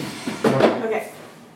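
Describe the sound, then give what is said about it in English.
A brief scraping, creaking burst of furniture noise as a chair is dragged and swapped out for another, lasting about half a second before fading into quiet room tone. “Let me just swap out my chair.”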